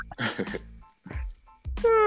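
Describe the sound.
A cat meows once near the end, a short, fairly loud tonal cry following a few brief voice-like vocal sounds and a quiet pause.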